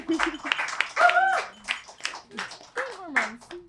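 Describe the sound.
A crowd of people clapping steadily for a few seconds, with whoops and excited voices rising over the applause.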